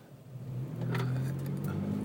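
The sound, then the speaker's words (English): A car engine hums low and rises steadily as the vehicle accelerates, with a broad rush of traffic noise around it and no voices. “Watching this traffic accident about to happen.”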